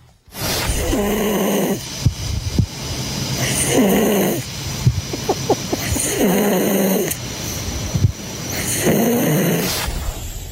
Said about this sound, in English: That's me snoring, is it?